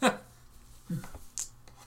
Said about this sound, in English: The problem of real life dice. They're more fun to roll, but they go everywhere.